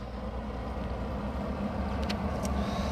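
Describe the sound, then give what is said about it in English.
Steady rumble of road traffic passing outside, a continuous low engine drone with a faint higher hiss drifting through, fairly loud and unbroken, with no voices. “Yeah, here we go. Invasive traffic.”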